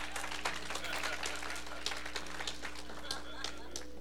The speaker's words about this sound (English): Everybody clap.